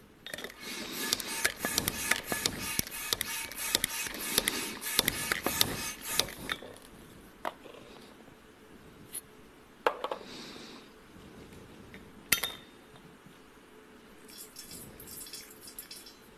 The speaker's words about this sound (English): And what I have here is an empty glass vessel. It's got nothing in it. And now I'm going to fill it with oxygen and whiskey.